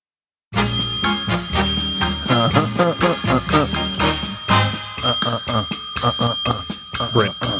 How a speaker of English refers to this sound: please don't ring that bell. It makes me want to do things. Oh my God. It's triggering something in me.